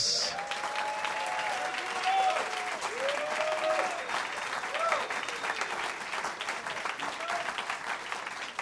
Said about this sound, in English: Shall we give a good clap to Jesus?